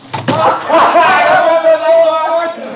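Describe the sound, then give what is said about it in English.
A door shuts with a quick, solid thud near the start, followed by a sustained, tonal voice-like sound that fills the rest of the moment. “Betty, close the door.”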